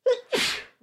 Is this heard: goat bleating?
no